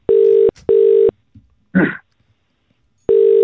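An outgoing phone call to Dillian White in the UK, ringing tone in a double-ring pattern: two short steady buzzing tones, a pause with a brief faint noise, then the next ring begins. Clear and fairly loud.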